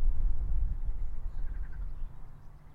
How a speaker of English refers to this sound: That's a marsh frog